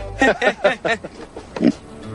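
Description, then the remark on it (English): A pig grunts in a quick run of four or five short, throaty bursts, then lets out one more grunt after a brief pause, moderately loud. “we got all 8 of the pigs that needed treatment taken care of”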